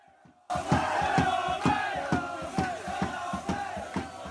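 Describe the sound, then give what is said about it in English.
A big crowd of football fans chants loudly in unison in the stands at the Shed End, driven by steady rhythmic claps or stamps about twice a second, bursting in after a brief quiet start. “That's your shouts from the shed end.”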